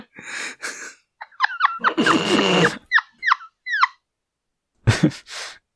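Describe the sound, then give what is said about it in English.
A woman imitates a dolphin with a quick run of short, high-pitched squeaky chirps and whistles, broken by loud breathy huffs and a harsh gasp, then two airy bursts at the end. “squeaking and doing her dolphin impression.”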